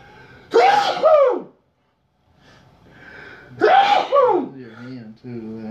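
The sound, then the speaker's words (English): Two loud sneezes a few seconds apart, each a sharp voiced burst that drops away, with some quiet vocal sounds trailing after the second one. “I gotta sneeze.”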